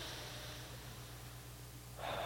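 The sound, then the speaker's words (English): A long, deep cleansing breath drawn in through the nose with a soft hissing rush, a brief pause, then an exhale through the mouth begins, over a low steady hum, with no talking, during a guided breathing exercise. “Let's take some deep cleansing breaths. In through your nose, out through your mouth.”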